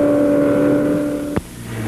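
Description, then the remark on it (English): A steady, droning engine whine holds loud, then a sharp burst cuts in and the engine drops to a lower, rougher hum as sports cars pass during the 12-hour Sebring Grand Prix of Endurance race in Sebring, Central Florida, United States. “From all over the world, they gather annually in a sleepy Central Florida town called Sebring for the premier sports car race in the United States, the 12-hour Sebring Grand Prix of Endurance.”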